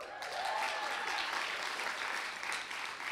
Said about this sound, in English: Because you just clapped for that, I will also say, because I am in Seattle, I will say, go Seahawks.